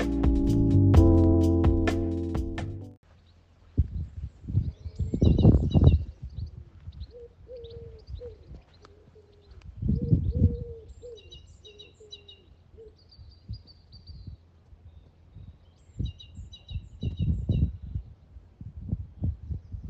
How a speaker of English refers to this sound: Yeah, well, and my dad in Norfolk has recorded what we think is a blue tit. So without further ado, I want to bring you 30 seconds of birdsong from Norfolk.